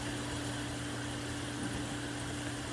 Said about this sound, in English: Take a few deep breaths, and I invite you to listen to the water in the background. Today's spiritual practice originates from the temple in Independence, Missouri. I'm currently sitting by the worshiper's path near the waterfall